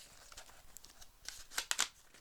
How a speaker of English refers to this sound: Okay, I've written. He's writing it down. I'm folding it into an envelope.